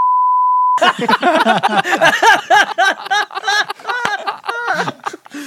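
A steady, loud censor beep tone sounds alone for under a second, then cuts off abruptly into lively voices and laughter that continue to the end.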